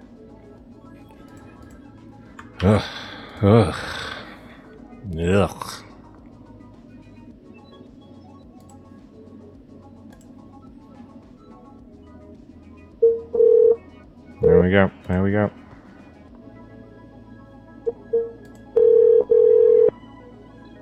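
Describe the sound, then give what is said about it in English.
Short electronic telephone tones beep in a few separate bursts, with a steady dial-tone hum near the end; a person speaks briefly before and between the beeps. “Oh, her phone's fucked.”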